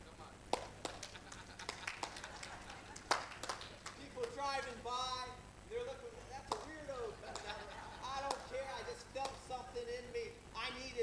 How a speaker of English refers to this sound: Clap your hands, all you people. Let's do it again. Clap your hands, all you people,